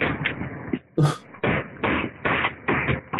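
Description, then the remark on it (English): A rapid series of heavy, hammer-like knocks from a pre-tensioned cable in a cement frame snapping at a new construction site, loud and roughly evenly spaced, with one sharper, brighter bang among the dull thuds and no voices. “Oh God, it's like hammer noises.”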